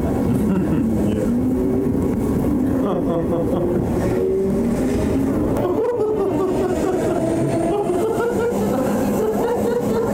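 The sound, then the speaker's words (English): Steady, loud rumble of a subway car in motion, with rising and falling motor whine and rattling along the tracks throughout, and muffled voices mixed into the din. “It's just a guy like going on a subway and just starts laughing just to see what people will do.”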